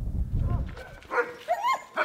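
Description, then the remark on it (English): Sled dogs bark and yip at a kennel in Denali, in short, excited bursts, several sharp calls with a rising whine among them, over a low rumbling background. “These dogs were bred to sled.”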